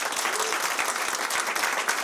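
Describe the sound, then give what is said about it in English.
An audience at the Improv comedy club in Brea applauds to show they have never been to a live taping, a dense, even wash of many hands clapping at once, sustained at a consistent loudness for about two seconds without any voices. “How many people here have never been, by applause, have never been to a Doug Loves Movies taping?”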